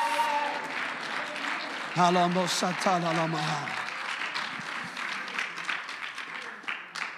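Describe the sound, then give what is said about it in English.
A church audience claps steadily and densely throughout, shouting unto God with loud raised voices calling out over the applause, strongest in a burst of sustained vocal cries midway through. “Oh, if you believe that, I wish you'd clap your hands and shout unto God.”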